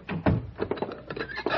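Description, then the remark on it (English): A wooden door thuds shut, followed by several short knocking and scraping sounds as a bolt is slid into place, a quick cluster of dull, mid-loud impacts with no voices. “Shut the door and bolt it.”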